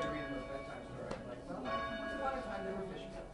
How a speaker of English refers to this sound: And the first thing you notice about it is that there are all these ropes hanging down from the ceiling in a circle. And those ropes are each connected to a bell. Each rope goes up to a wheel, and the wheel swings the bell.